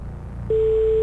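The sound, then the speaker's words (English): An old Norwegian telephone ringing tone: a single steady, mid-pitched beep cuts in halfway through and holds loudly to the end, over a faint low rumble. “He's on the phone. That's just the old Norwegian ring.”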